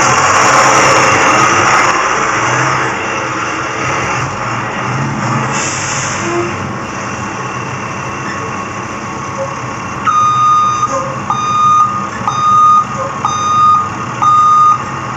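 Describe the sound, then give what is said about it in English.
A bus engine, the 2024 edition of The Bus, idles with a steady rumble, and after about ten seconds a loud run of evenly spaced reversing beeps starts up over the engine noise. “It is with special thanks today that we get to bring out the 2024 edition of The Bus.”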